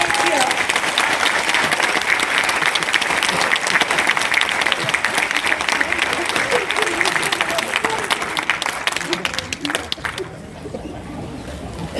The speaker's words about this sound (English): Give me a round of applause.